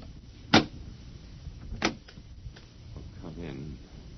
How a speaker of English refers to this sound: The last man on Earth sat alone in a room. And then, there was a knock on the door.